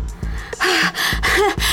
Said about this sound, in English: The sweat ran off their noses. They panted for breath.